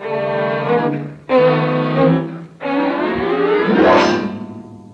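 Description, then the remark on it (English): A car engine pulls away, revving loudly in three rising surges as it shifts through the gears, with the pitch climbing sharply in the last stretch. No one speaks. “You drive, fella.”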